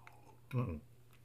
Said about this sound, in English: Just a second, let me sip my tea.